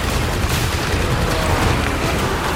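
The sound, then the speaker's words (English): Heavy blaster fire and explosions from a battle with mortar rounds dropping merge into a dense, unbroken roar, with deep booming rumbles beneath a constant crackle of rapid shots, loud and sustained throughout with no voices. “The wails of the dying mixed with heavy blaster fire.”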